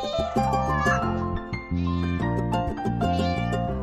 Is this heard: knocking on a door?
no